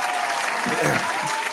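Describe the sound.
A steady burst of clapping from a crowd, dense and continuous across the whole moment, with a brief murmur of voices rising in the middle.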